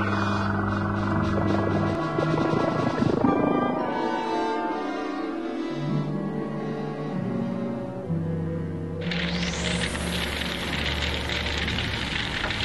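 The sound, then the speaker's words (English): A spaceship's engines power up with a layered, humming drone whose tones step up and down, then a bright rising whoosh surges in and holds as the craft lifts off. No voices. “Coordinates locked. Engines engaged. Taking her up the ass.”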